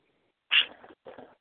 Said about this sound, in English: Cody Bird. Calm down. Oh, I just heard a minute. He's being squawky because it's time for birds to go to bed.